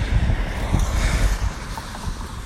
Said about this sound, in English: Oh, that was a big splash. I won't get caught by that, by this next car.